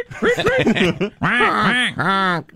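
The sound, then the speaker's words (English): A human voice mimics bird calls, squawking and quacking in a quick run of short choppy cries followed by two longer, drawn-out honks, loud with no other sounds. “I know Biden, you like the bird noises”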